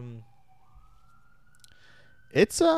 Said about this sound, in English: You guys hear that siren? That's my life.